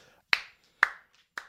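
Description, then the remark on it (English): One person claps three times at a slow, even pace, each sharp crack ringing briefly, with quiet between claps and no talking. “is clapping.”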